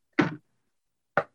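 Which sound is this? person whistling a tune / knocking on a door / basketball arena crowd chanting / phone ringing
knocking on a door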